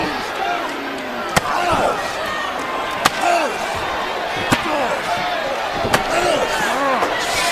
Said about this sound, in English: Broke that chair over. Broke that chair over Ambrose.